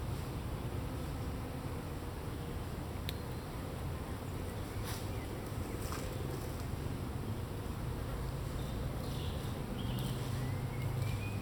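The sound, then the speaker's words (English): A dense, steady hum of many bees and hoverflies buzzing together in a tree overhead, heard standing underneath it, continuous and even throughout, with a few faint clicks and chirps in the background and no talking. “you can hear it if you stand underneath it. It's buzzing with bees and hoverflies and beetles and all sorts of stuff.”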